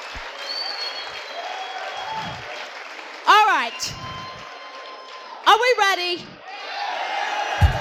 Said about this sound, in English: You owe yourselves a round of applause.